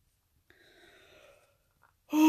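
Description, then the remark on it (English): A single drawn-out, breathy yawn, the person's third, fairly quiet and lasting about a second, followed by a brief pause before a voice abruptly starts at the end. “Third yawn, Jesus.”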